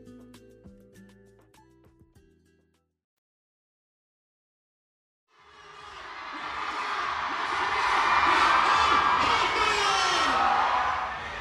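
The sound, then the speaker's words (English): After a brief silence, a huge crowd gathered around a stage platform on an expo convention floor, waiting for a fourth-generation idol, swells from a murmur into loud, sustained cheering and whooping. The dense roar of many voices builds and holds steady until the end. “Right now, I'm standing at the edge of this huge crowd that has gathered around this platform on the convention floor.”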